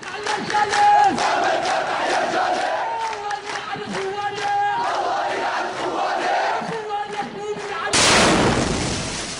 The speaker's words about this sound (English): It's called Explosion Rips Through Funeral Procession. It's from July 3rd, and the video shows a funeral procession carrying a body aloft.